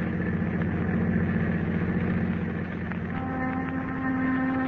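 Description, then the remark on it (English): A car engine drones steadily while driving in fog, a loud, continuous low hum that shifts pitch slightly partway through as the driver eases off to stop. No one speaks. “I'm going to stop here. Now, you stay in the car.”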